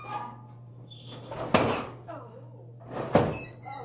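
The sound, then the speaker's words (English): An ore crushing machine smashes ore: two heavy, sharp crunching impacts roughly a second and a half apart, each with a rough grinding tail, over a steady low mechanical hum. “You want to go down, it smashes the ore.”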